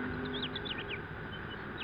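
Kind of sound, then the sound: bird, birds calling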